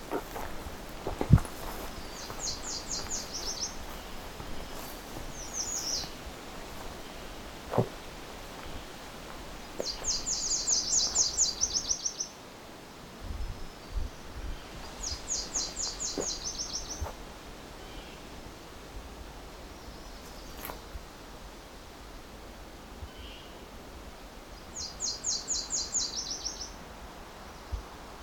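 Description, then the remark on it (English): A Nashville warbler sings a variant song of short, high, buzzy trilled phrases, repeated about five times with pauses between, over steady outdoor background noise and occasional rustling footsteps. “Another variant Nashville warbler.”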